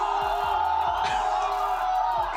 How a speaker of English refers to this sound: So this is the fans booing her.